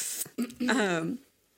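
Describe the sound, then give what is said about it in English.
A voice makes a short, sharp hiss imitating a spray bottle spraying a solution of alcohol and iodine onto burns, then trails into a drawn-out vocal sound. “Spray you down.”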